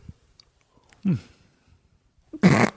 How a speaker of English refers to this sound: Sorry, it's late. It is late. I was yawning.